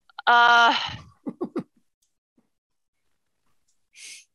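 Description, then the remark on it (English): A voice imitates a yawn: a loud, drawn-out groaning yawn, then a few short mumbled vocal sounds and a faint breathy exhale after a pause. “he kind of like yawns a little bit, and you can tell this is definitely a farmer, very salt of the earth type.”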